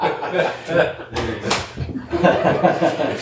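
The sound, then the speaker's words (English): A single sharp open-hand slap cracks out in the middle, loud, surrounded by people talking and chuckling before and after it. “What do we want? A bitch slap. When do we want it? Now.”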